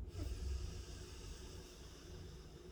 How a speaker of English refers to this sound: Now let's let all of that sink in by taking 5 final deep breaths here together. Breathing in through the nose.